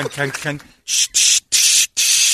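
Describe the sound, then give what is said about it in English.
A person briefly speaks, then imitates a Krylon spray paint can with their mouth: four short, loud bursts of bright hissing in a quick, even rhythm. “Krylon cans, and she spray paints evidently.”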